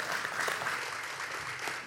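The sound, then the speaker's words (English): A crowd at Vertical claps steadily throughout in response to its 2017 figures of first-time guests, a dense patter of many hands at fairly even loudness, with no one speaking over it. “Yeah, you can clap for that.”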